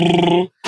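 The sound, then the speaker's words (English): A voice mimics the Federal Reserve's money printer running as more money is printed: a loud, buzzy, steady drone of about half a second, a brief silence, then a short breathy, noisy burst. “So the printer at the Fed is going to go.”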